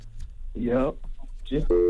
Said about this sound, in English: Sorry. Hi. Phone got disconnected.